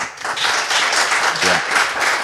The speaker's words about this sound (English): Have you ever heard 800 people clap before?